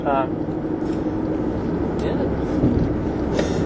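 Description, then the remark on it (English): A big truck rumbles past close by, its deep, steady engine and road roar filling the whole moment and swelling slightly partway through, with faint wind noise on top. “Big truck coming into our lane.”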